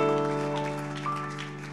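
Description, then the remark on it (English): A church audience claps steadily together in praise, a dense patter of many hands, over sustained chords from an organ or keyboard that hold throughout. “Go ahead and keep that hand clap of praise unto the Lord today.”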